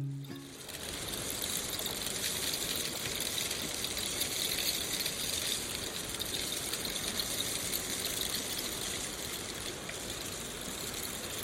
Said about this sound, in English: It's called the rain stick.